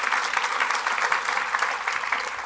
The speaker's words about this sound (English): So thank you, guys. Big round of applause. Thank you.